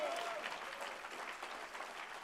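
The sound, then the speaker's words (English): Steady applause from a large gathered crowd, dense overlapping clapping that sustains evenly throughout, with no one speaking, as the crowd puts their hands together to thank God for Jesus Christ at a preacher's call. “Can you put your hands together and thank God for Jesus Christ?”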